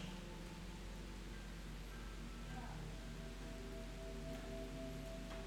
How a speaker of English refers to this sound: As the raindrop descended, the gentle pitter-patter of rain filled the air.